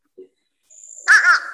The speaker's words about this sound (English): here it is, fish crow. I'll just let it play one little short call or two. Fish crow.